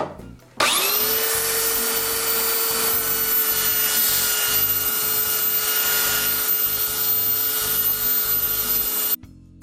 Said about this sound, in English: The only way to really remove stain from a piece of wood is by sanding it. So that's what we're doing today.